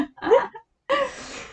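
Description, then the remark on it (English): A short burp with a quick rising tone from a person who has been drinking wine, then after a brief pause a longer, rougher belching sound that trails off. No one talks. “Sorry, my wine excuse made me burp.”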